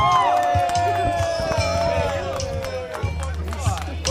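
A crowd at a Halloween battle royale cheers and roars for Bob Ross steadily and loudly for about four seconds, a dense wash of many voices with a few higher shouts rising above it and no pause in the noise.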